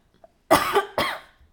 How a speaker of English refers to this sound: I'm not sick. I don't know why I'm coughing. Anyway, so the cough is probably gonna be pretty loud in this recording.